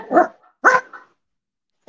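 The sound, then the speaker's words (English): A dog barks twice in quick succession, fairly loud, with a short pause between the barks and silence afterward, ending on the start of another sound. “The dog agrees with the 2 year contract idea.”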